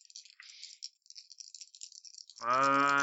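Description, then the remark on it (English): Dice being rolled rattle and clatter steadily for a couple of seconds, a busy high-pitched shaking, before a loud sustained tone abruptly takes over at the end. “Drop one dice and spend in willpower for a fast.”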